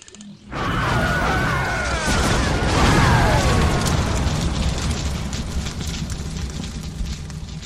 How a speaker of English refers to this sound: Thermal detonators. The rebels placed them on the inside of the door. The charges mixed with our own explosives caused a cave-in.